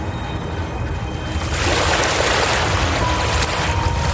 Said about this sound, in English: I drive through the barriers until the car starts floating in fender-deep water. We get out and splash our way towards the ocean.